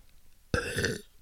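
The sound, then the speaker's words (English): A single loud burp erupts abruptly and rumbles for about half a second before cutting off, with near silence around it and no talking. “Did you get the burp?”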